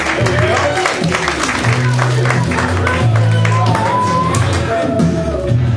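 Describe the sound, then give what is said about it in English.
An audience at We Got Next Comedy in Pittsburgh applauds and cheers loudly for about six seconds as a comedian is introduced, steady clapping mixed with whoops and shouts, while low, droning music plays underneath. “Give it up for”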